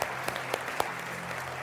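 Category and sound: crowd, audience applauding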